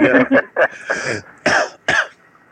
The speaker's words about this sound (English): Who's coughing? Is that you?